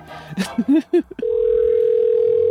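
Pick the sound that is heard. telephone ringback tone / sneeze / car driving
telephone ringback tone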